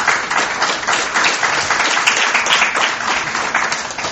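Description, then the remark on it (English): A church audience applauds steadily for about four seconds, a dense, even wash of many hands clapping at once with no voices rising above it. “You've got a round of applause, church.”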